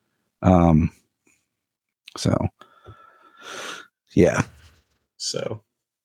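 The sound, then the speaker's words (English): A voice imitates raspy, heavy breathing: several harsh, breathy exhales and gasps in short bursts with pauses between, fairly loud. “At the very end of the credits, you hear him breathing. It's like raspy voice, raspy breath.”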